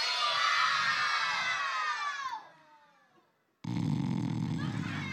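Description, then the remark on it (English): An audience shouts the puppet's name "Leo" together loudly in unison on a count of three to wake him, a long, drawn-out call that falls in pitch and fades away, followed by a brief silence and then a burst of steady, noisy sound. “All right, on the count of three, everybody shout Leo's name.”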